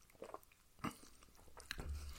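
Quiet sipping of a cocktail from a glass: a few wet mouth and lip sounds with a couple of sharper clicks, then a low soft thud near the end. No one speaks.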